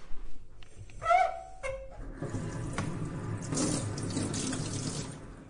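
A tap squeaks briefly as it turns, then very hot water gushes steadily into a sink, fairly loud, with hands being washed, rubbing and splashing under the running stream before a blood spot test. No one speaks.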